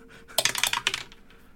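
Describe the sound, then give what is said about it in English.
Dice are dropped, not down the dice tower, and clatter across a hard tabletop in a quick burst of sharp rattling clicks that settle within about a second, with no one talking. “Oh, I dropped it, but not down the tower.”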